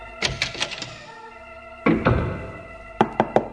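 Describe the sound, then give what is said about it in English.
Someone knocks on an office door in three quick bursts: a rapid run of raps, a short double knock after a pause, then a final brisk flurry of four. Fairly loud, with no talking. “open the door to your opulent office. I know you're in there.”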